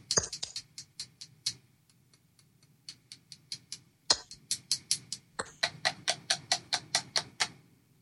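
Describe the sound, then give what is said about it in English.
Sharp, bright clicks of batteries knocking against a headset microphone, struck in quick rhythmic bursts with a few louder thumps mixed in, over a low hum. “That was me smashing the batteries against the microphone I'm using.”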